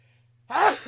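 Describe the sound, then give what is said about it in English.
A single sharp, loud sneeze bursts out after a moment of near silence with a faint low hum, ending abruptly with no talking. “Sorry about that. Had to sneeze there.”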